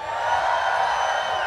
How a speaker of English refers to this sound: so cheer out when I call your home state. Are there people here from the United States?